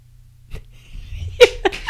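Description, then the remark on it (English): After a quiet stretch with a low hum, hands clap three times in quick, uneven succession, the first clap the loudest and sharpest. “Yeah, I'm clapping.”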